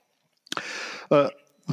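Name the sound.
sneeze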